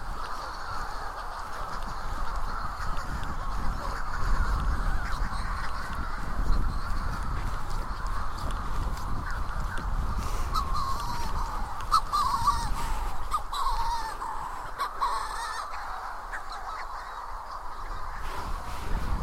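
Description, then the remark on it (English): In the dark by the sea, a dense, continuous chorus of seabirds calling on the ground and passing in the air, harsh overlapping squawks and cries that fill the air steadily for the whole stretch, with no one speaking. “My God, the sound of the sea has been replaced by the sound of seabirds.”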